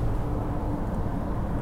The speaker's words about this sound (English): Woo! Those are big trucks.